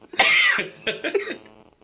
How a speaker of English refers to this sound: Yeah, coughs. Jeez, what's going on over there?